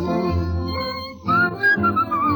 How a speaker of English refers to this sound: I'm whistling, looking at that lovely moon, when the stars above are glistening, I'm just as tickled as a baby with a toy balloon.